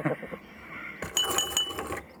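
Keys jingle in a quick burst of bright metallic clinks and rattles lasting about a second, with high shimmering tones over a quiet background.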